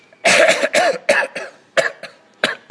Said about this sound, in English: It's gone into a paroxysm of hawking and spitting.